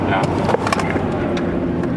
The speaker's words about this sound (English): He's driving. We take the car down the straightaway. Can we go a little faster than 60? Let me get past the... Okay, we're at 70.